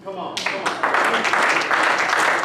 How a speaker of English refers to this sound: That's the point where you're supposed to give him a clap.